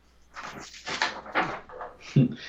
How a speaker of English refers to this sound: So I just got a note through the door.